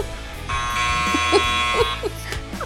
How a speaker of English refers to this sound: Yeah, so a little later in the show we're gonna play a game, and these two fools that I have with me can't keep their hands off their buzzer.